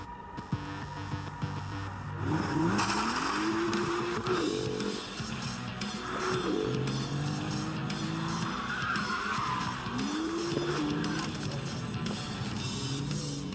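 A BMW M2 sports car, in a clip from The Grand Tour with Jeremy Clarkson, drives hard, its engine revving up and down in repeated surges while the tires skid and squeal loudly and continuously, with no voices.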